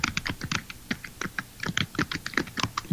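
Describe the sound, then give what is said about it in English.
Rapid, uneven keyboard typing, with many sharp clicky keystrokes tumbling out in quick bursts for a few seconds, no voices over it. “Your typing is amazing.”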